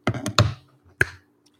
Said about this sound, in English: That was a snap.